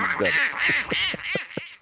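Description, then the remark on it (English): An angry Donald Duck cartoon voice quacks in a rapid, sputtering burst of five or six raspy, nasal squawks, loud. It is a human voice imitating a furious duck. “No, he's not a very patient duck.”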